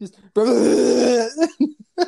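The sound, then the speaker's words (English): A long, loud, croaking burp after drinking Dr Pepper soda rumbles for about a second, followed by a few short vocal sounds. “Pepper, and I decided to throw up while I was That's burping.”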